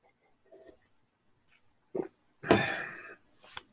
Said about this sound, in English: Which I don't notice any problems with smell, though. It's like this tea, I can smell the raspberry tea, no problem. Which I better take a sip of it.